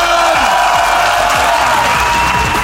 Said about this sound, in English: Ladies and gentlemen, give a massive round of applause, Rob Brydon!